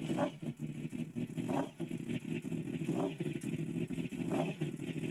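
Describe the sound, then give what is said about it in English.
A motorcycle with a loud aftermarket exhaust starting up, its deep, uneven idle swelling in brief surges roughly every second, with no voices. “Is it original exhaust? No, it's aftermarket.”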